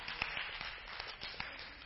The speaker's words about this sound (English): Why don't you all clap and celebrate this awesome, awesome victor we serve?